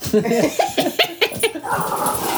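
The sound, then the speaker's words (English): Dogs bark aggressively in a rapid burst of about half a dozen sharp barks, then give way to a rougher, noisier stretch of agitated sound. “Oh no, angry dogs.”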